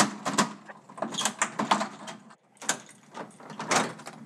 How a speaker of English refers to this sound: Why do you have to bang on the door like that? Thought I lost my key.